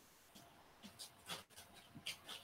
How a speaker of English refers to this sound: My dogs are going bananas.